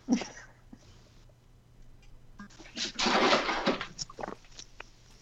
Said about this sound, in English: A cat ran by and ran into like a fan that's sitting on the floor, and it slid.